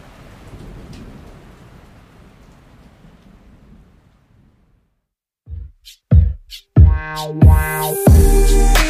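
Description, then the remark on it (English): Steady night-time rain with low, rolling thunder and lightning rumbling underneath, slowly fading into near silence, followed by loud, punchy musical hits. “The thunder and lightning kept waking me up, but I was still able to get a decent night's sleep.”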